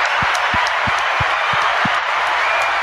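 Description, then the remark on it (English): A steady, dense wash of crowd applause runs loud and even throughout, with a soft, regular low thump pulsing underneath about three times a second. No one speaks. “Oh, let's give a round of applause.”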